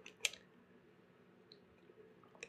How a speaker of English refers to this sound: Oh, sorry. I'm going to take a little drink of water.